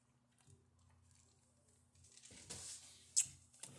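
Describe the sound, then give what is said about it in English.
Someone takes a quiet sip of water: soft mouth and liquid noises, a small swallow and a couple of faint clicks over a low steady hum, with no talking. “Hold on, let me take a drink of water.”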